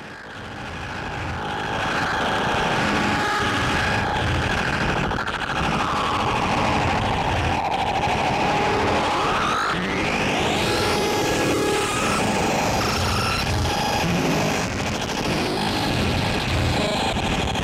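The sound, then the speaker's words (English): Loud, buzzy synthesized square wave tones play continuously, their pitch gliding slowly downward and then sweeping sharply upward into a dense, layered cluster of harsh electronic notes. No one speaks. “So in honor of that coming out, today we are just going to be playing with square waves.”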